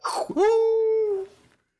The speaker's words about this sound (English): Editor, cut in a lightning bolt and a wolf howl.